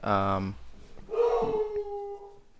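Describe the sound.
A man howls like a dog, loud: a short throaty vocal burst, then a longer sustained howl that wavers and slowly trails off.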